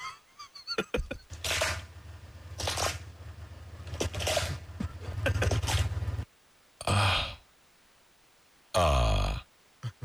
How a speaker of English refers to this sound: That is the sound of an alligator eating.